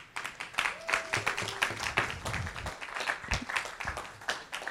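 An audience claps steadily, with many hands making a dense, continuous patter of sharp claps at moderate loudness that holds throughout without fading.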